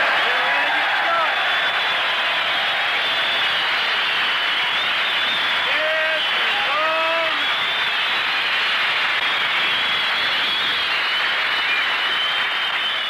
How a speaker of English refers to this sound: All right, fellas, you can stand up and cheer. This show will roll now, because Harris is here.